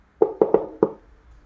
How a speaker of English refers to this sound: All right, I'll knock on the door.